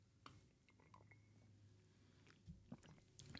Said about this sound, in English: I slurped there. Sorry.